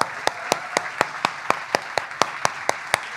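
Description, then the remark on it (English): A room full of people claps in steady unison, roughly four sharp claps per second, over a continuous wash of cheering and crowd noise, celebrating people who have just accepted Christ. “Guys, if you're wondering why a room full of people are cheering, it's because we made that same decision and we're so proud of you.”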